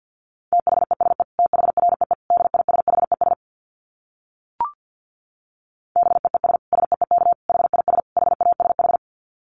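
Rapid Morse code at 50 words per minute: a single steady, mid-high tone keyed in fast dits and dahs, sent in two long runs separated by a pause broken only by a brief click.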